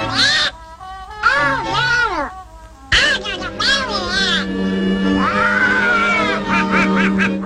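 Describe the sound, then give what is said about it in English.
A raspy, nasal cartoon duck voice squawks and sputters in rapid, garbled bursts, loud, with a steady low hum running underneath; the cartoon duck character first appeared in 1934. “It was today in the year 1934 that this beloved waterfowl with an anger management issue was bestowed upon the world.”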